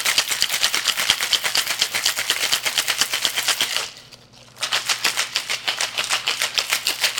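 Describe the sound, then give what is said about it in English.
Ice rattles hard inside a cocktail shaker as a cocktail with Angostura bitters is shaken longer to make it emulsify, in a fast, steady rhythm of sharp clacks, pausing briefly midway before the vigorous shaking resumes. No one speaks. “You do want to shake this one a little bit longer than in other cocktails”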